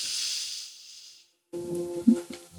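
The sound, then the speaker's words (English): A long, airy breath drawn in through the nose for about a second, followed by a brief pause and then a resonant, humming tone starting up from a mini Monalina instrument playing harmonic chords with overtones. “So breathing in”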